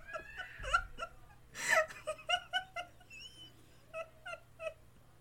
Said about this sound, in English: Jesus, like, it's so fucking, like, there's a baby fucking screaming. I hear it.